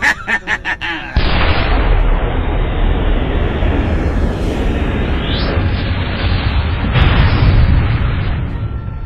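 A rocket launcher is fired at an enforcer drone with a quick burst of rapid pulses, then a huge explosion from a direct hit erupts into a loud, sustained roaring rumble, with a whooshing sweep midway and another swell of blast near the end.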